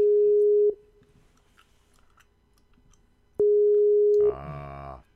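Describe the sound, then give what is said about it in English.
Two steady, loud ringback tones from an outgoing phone call, each about a second long and separated by a few seconds of near silence, with a short burst of other sound right after the second ring. “It's just going to keep ringing the entire time.”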